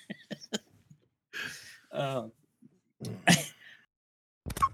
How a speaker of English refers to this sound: Not gonna lie, that hiccup was actually real and came out at the most perfect time ever.